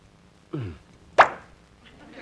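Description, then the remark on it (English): A cork pops out of a brandy bottle with a single sharp plop, just after a brief strained vocal grunt, then quiet. “did you just open a bottle of brandy?”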